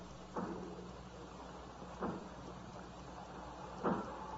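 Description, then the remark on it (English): Three heavy, muffled blows land about two seconds apart as the doors of a factory are broken down, over a steady rushing background noise. “As if they were breaking down the doors.”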